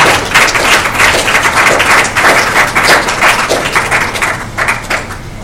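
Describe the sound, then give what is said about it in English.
A crowd claps hands for the Lord in a dense, continuous burst of applause, loud, with many overlapping claps sustained for several seconds without any talking. “Give a clap of hands to the Lord.”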